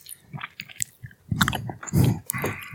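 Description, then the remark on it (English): Chewing of hard Pez candy, with a series of crunchy bites and moist mouth sounds in an irregular rhythm, loud, with no talking. “You can chew that Pez right directly out of it.”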